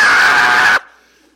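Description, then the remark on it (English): A voice imitates a girl's loud, sustained high-pitched scream lasting under a second, cutting off abruptly into near silence with a faint trailing echo. “And he said, one girl in the corner of the elevator starts screaming, ah!”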